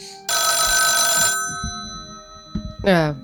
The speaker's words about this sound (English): And it's about this time that, Scarlet, you get a phone call.